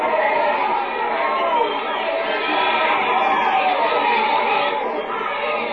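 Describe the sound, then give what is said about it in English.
A dense crowd murmurs and chatters steadily, many overlapping voices blending into a continuous, fairly loud babble with no single speaker standing out. “Meanwhile, the crowd gather.”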